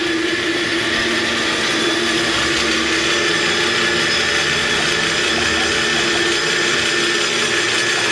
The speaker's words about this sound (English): All right, now we are at Mason and Pacific. Get some good cable car sounds.